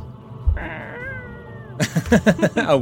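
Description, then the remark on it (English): Someone imitates a feeble eagle screech: after a soft thump, a thin, wavering, high cry holds for about a second, then breaks into a run of rapid, raspy, louder pulses. “a weak eagle screech.”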